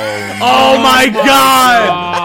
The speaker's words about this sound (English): Oh my god. I'm sorry for yelling. Oh my god.